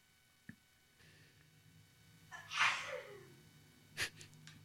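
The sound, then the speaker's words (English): A single sneeze: a sharp indrawn gasp building into a loud, breathy burst, followed by a short snort or sniff. A faint click sounds beforehand, with no talking. “Bless you.”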